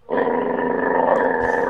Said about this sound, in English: I don't know why I thought playing a dog bark would be funny.